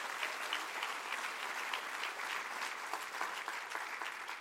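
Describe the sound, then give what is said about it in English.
Steady applause from an audience clapping at a pastor's call while he preaches, many hands clapping at once in a dense, continuous patter that holds an even level for several seconds with no voices rising above it. “Come on, clap your hands and say, I like that, Pastor.”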